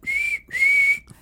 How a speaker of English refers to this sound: Blow the whistle. That was weak. I whistle as good as that, only less.